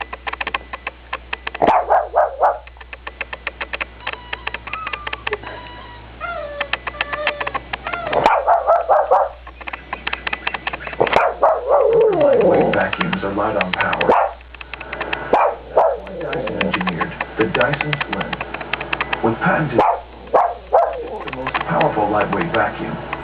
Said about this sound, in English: Secondly, this dog was barking before the commercial began. Thank you. This is just a dog that barks a lot. At everything.